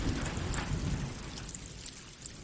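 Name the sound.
rain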